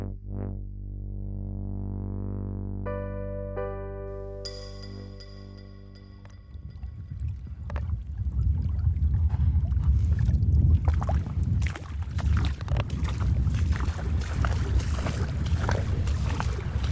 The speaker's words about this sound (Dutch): We lopen nu langs de branding naar de punt van de baai van Okvolgen,